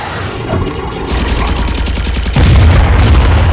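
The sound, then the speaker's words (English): Rapid bursts of blaster-like gunfire in a space dogfight rattle over a constant roaring engine rumble, then a heavy explosion swells louder near the end, the whole mix dense and loud with no voices. “Edge of your seat dogfight.”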